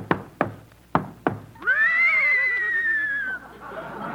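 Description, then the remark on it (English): Four sharp hoof clops ring out in an uneven rhythm as Dorothy Lamour rides one of Crosby's horses into the radio studio, then the horse lets out a loud, quavering whinny that trails off after a couple of seconds. “Hey, Abbott, there's somebody riding into the studio on a horse.”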